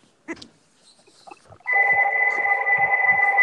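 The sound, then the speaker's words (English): After a few faint clicks and rustles, a telephone starts ringing loudly, a steady electronic trill that continues to the end. “Gus, the phone is ringing.”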